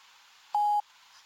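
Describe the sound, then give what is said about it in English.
A single short electronic beep, a steady pure tone lasting about a quarter second, sounds clearly over a faint background hiss: the prompt tone of an automated voicemail system. “You have reached an automated voicemail system. Please leave a message after the tone.”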